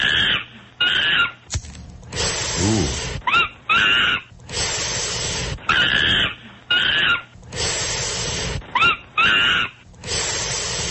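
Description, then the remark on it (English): Miss Baker, a monkey, shortly after returning from space, gives a series of high, squeaky chirping calls with rising pitch, alternating with breathy, hissing bursts in a steady back-and-forth rhythm, fairly loud throughout. “I understand we have some rare audio of Miss Baker shortly after she returned from space.”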